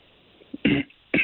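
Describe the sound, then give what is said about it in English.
A person coughs twice in quick succession, fairly loud, with a faint throat-clearing rasp leading into the first cough and no talking. “I started started coughing.”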